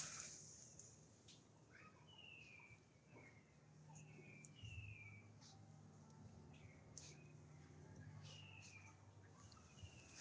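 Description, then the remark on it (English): Birds chirp repeatedly in a courtyard in the Barrio de Santa Catarina, Coyoacán, Mexico City, short bright calls scattered throughout, over a soft low background hum and no one speaking. “I hear all the birds.”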